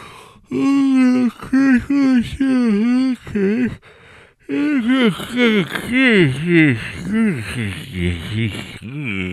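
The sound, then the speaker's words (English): A voice makes a run of exaggerated, drawn-out yawning sounds: long moaning tones that rise and fall, loud, growing choppier and more warbling toward the end. “If you want, I'll just do a whole podcast where I yawn the whole time.”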